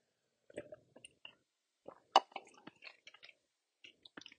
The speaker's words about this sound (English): Let me get a quick drink of water here.